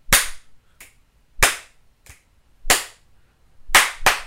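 Five sharp hand claps in a steady beat, with two lighter finger snaps slipped between the early claps and a quick double clap at the end. Crisp, with no talking.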